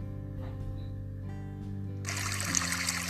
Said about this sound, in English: Babbling, burbling, splashing stream sound hopped over the rocks happily